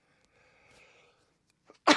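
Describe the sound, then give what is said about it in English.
A single loud sneeze bursts out abruptly near the end, forceful, after a stretch of faint low murmuring and near silence. “I didn't sneeze the whole time I was waiting for the show to come on.”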